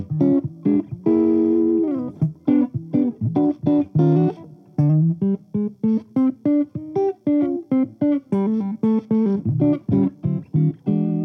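A mellow, dark-toned electric guitar with its tone rolled off plays a steady run of plucked notes and chords, its highs softened and rounded. The playing is clear, with no voices over it.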